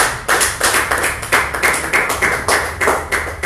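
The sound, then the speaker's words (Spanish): An audience applauds together for the Lord during a Spanish-language sermon, in a steady, rhythmic beat, the many hands clapping in unison, loud, with no voices over it. “Un aplauso al Señor.”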